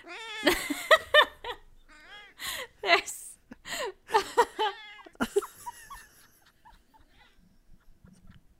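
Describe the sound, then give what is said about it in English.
A female cat meows over and over in a quick, chattering run of varied yowls and trills, loud, with a person briefly speaking and gasping in between before things go quiet. “There's so much personality in that cat. Mm-hmm. Oh, my God. She said so many things just now.”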